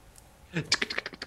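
Quick computer keyboard typing, a short flurry of keystrokes followed by a steady run of evenly spaced clicks, fairly quiet overall.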